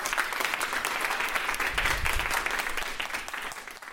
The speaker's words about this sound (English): So thank you all. Please give yourself all a superhuman round of applause.